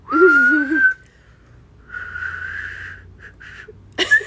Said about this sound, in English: All right, I want you to whistle again.